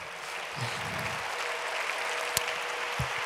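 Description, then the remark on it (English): A crowd claps their hands to the Lord, a dense, steady wash of many hands with no gaps, holding an even level throughout, with a few sharper individual claps standing out. “If you believe that, clap your hands to the Lord today.”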